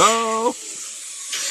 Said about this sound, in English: What was that? A steam engine from the 1890s. A bit of the noise of farming for all of you farm historians out there.